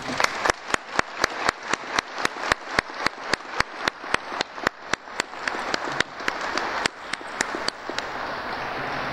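A roomful of people in the Nebraska state rotunda applauds the artists who made ornaments, a dense wash of clapping with sharp individual hand claps standing out, holding at an even, fairly loud level for several seconds.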